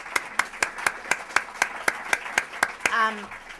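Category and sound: crowd, audience applause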